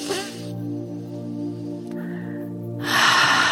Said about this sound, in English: Okay, so let's start today's meditation by just taking a couple of breaths to just reset our energy a little. So let's start by breathing in through the nose and out through the mouth, breathing in.